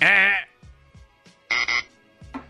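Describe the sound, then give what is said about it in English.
A harsh, loud buzzer blares for a short moment, then sounds again as a quick double burst, with faint low mumbling in the quiet gaps between. “you should hit yourself with a buzzer.”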